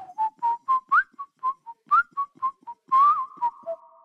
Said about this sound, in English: this is probably my favorite of all the tracks. And it's doing so many things. I love that it enters with a whistle.